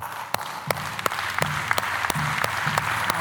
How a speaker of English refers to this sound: Now, you can also praise God 3 ways with your body. You ready for this? You can clap your hands.